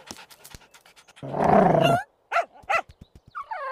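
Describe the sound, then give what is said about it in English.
A dog named Dev lets out a harsh, snarling growl, then two sharp barks follow in quick succession, ending on a higher whining yelp. No one speaks. “Control your psycho, maniac. Bad Dog Dad.”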